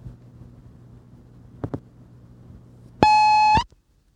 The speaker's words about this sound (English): Beep.